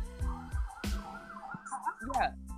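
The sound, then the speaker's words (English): An emergency vehicle siren wails and sweeps in pitch as it passes by, loud, with voices talking over it. “Are you talking about the sirens?”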